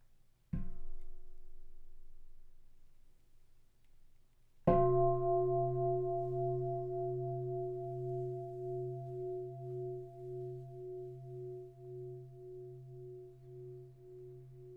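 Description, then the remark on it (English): A meditation bell is struck twice, a few seconds apart, at the start of a guided meditation. The second strike is louder and rings on in a long, humming tone that wavers and pulses as it slowly fades. “Let's begin by enjoying the sound of the bell.”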